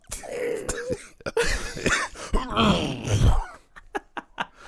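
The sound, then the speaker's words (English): A man's voice imitates Terry's raspy, hacking cough as heard on Beyond the Mat, rough and strained with groaning drawn-out phlegmy sounds, followed by a few short sharp bursts, fairly loud. “I can just imagine Terry's cough because, like, you can hear it on Beyond the Mat.”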